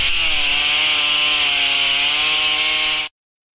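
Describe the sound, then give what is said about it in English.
A saw cuts through wood, sawing off a leg, with a loud, steady, rasping buzz and a droning tone underneath. It runs for about three seconds, then stops abruptly. No one speaks. “Really then, what about we take this little leg off then?”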